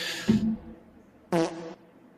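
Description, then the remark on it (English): Two loud, buzzy fart sound effects, one short burst near the start and another about a second later, with a quiet gap between them and no talking. “my victory was cheapened a little bit by a fart sound effect and another fucking fart sound effect that our producer keeps putting in”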